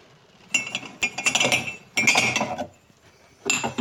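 A spoon clinks and stirs against a ceramic mug while making tea, in three short bursts of bright tinkling separated by brief pauses, with no one speaking.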